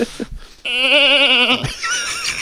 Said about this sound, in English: We brought a goat in just for that sound. Yeah, it's a live does. Goat in the studio right now. That's exactly what it says.